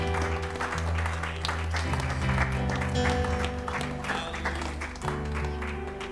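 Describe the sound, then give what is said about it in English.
An audience at a Sunday church service claps steadily for several seconds to give God praise, the dense patter of many hands blending with sustained organ-like music underneath, with a few scattered voices. “I want you to just clap your hands one more time.”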